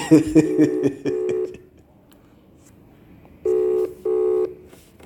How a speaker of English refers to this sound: Let's see if he will pick up the phone.